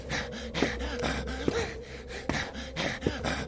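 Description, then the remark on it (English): A man's harsh, ragged breathing with repeated heavy gasps roughly every half second to second, fairly loud, with a strained, labored rhythm and no speech. “Do you hear his breathing? Ragged as a consumption patient.”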